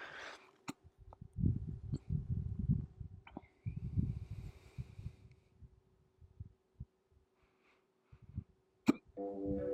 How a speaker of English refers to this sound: Sorry for the hiccups, excuse me. Something went down the wrong tube, trying to get my breath.